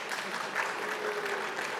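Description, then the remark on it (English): An audience claps steadily, a dense wash of many hands that holds at an even, moderate level throughout with no voices breaking through. “You can clap if you want.”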